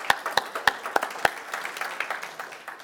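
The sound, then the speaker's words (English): An audience breaks into applause on Father's Day, a few sharp, evenly spaced claps standing out at first before blending into a steady patter of many hands that gradually softens. “Give yourself a clap.”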